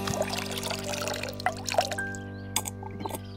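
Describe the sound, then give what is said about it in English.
Water pours in a steady, splashy stream for a few seconds, broken by small drips and plops, over a faint constant hum. The water is being fetched for a thirsty, weak little red bird with black wings. “Quick, let's get some water!”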